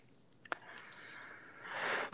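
A short sharp puff, then a breathy, raspy exhale that swells before ending in one loud, harsh cough blasting straight into the microphone.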